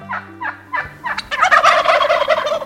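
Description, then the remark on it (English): A male wild turkey, a hefty bird about 4 feet from tail tip to beak, gobbles loudly, a few short clucks building into a rapid, rattling gobble that rolls on for over a second. “Take a close look at a male wild turkey, if you dare.”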